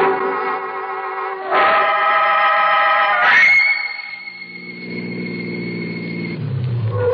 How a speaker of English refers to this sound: I'll pull in here. Trees will cover the car in case anybody happens to be out late on the highway. Can't be too careful.